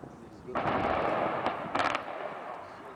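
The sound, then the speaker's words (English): A loud explosive blast bursts out and rumbles on, followed by a couple more sharp cracks a second later, from the controlled demolition of a chimney stack, with a steady noisy background. “So, right now, they're doing a controlled demolition of that chimney right there, that chimney stack.”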